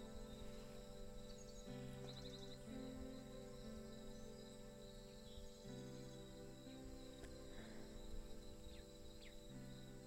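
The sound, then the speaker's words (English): Crickets chirp steadily in a dense, continuous outdoor chorus at dusk. A low droning tone rises and falls in the background, and no one speaks. “The crickets are getting louder.”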